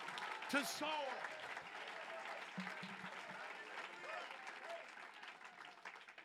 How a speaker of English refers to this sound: Clap your hands and believe it with everything you are.